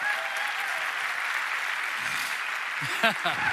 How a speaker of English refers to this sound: Clap wherever you are. Welcome him up, please.